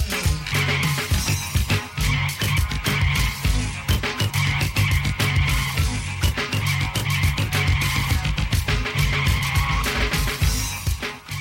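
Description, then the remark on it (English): Loud, driving music whose scratched samples in the song's bridge mimic screeching tires and a revving car pulling away, layered over a steady pounding rhythm for the whole stretch, with no voices. “Really cool how they can make these samples sound like it's a car chasing away or running away from whoever is chasing them.”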